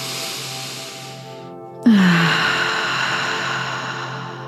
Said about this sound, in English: Okay, that's it. Keep that breathing going.